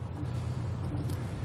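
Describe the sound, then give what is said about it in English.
A steady, low engine rumble from a car on the move, carrying a sheriff after a visit to a murder scene, constant, with a faint airy hiss of road noise above it and no voices. “remember when the sheriff who Bill Macy was originally reading for, when they're driving in the car after visiting the murder scene.”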